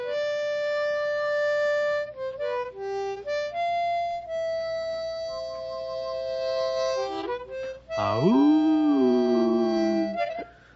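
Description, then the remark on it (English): A slow, wavering harmonica melody of sustained notes gives way to a person's loud howl imitating a coyote, sliding up sharply and then drawing out in a mournful, falling wail. “Well, that imitation of a coyote was pretty sad itself.”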